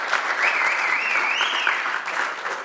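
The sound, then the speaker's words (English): An audience claps and applauds steadily, a dense, sustained wash of hands throughout, with a brief whoop rising above the clapping midway. “So I told him I didn't want to make a spectacle out of it, but as we clap there,”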